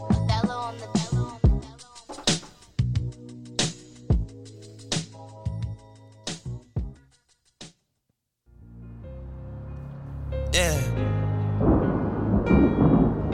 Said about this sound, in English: Hey man, fits the perfect vibe. You know the thunderstorm and the lightning.